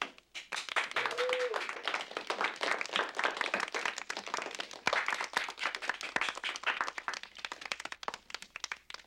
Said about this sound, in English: And the depressed citizens of London applauded and cheered, and there was nothing to be frightened about anymore.